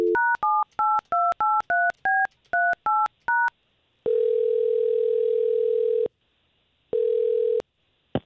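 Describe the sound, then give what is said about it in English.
A radio morning show team dials a woman's phone number: about a dozen quick touch-tone beeps, each a different pitch. Then comes a long steady phone-line tone, a pause, and the tone again, clear with no talking. “Again, all we're going to do here is we're just going to try to get the both of you to talk, but let us talk to her first. We appreciate you giving us her phone number.”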